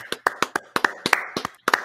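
Hands clap in a quick, slightly uneven series of about a dozen sharp, bright claps lasting under two seconds, with no voices over them.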